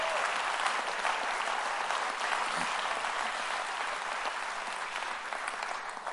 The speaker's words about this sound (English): Come on, clap your hands to the Lord and give Him praise.